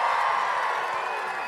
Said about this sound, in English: And how about these fans right here? Give them one more loud round of applause for Shohei Ohtani.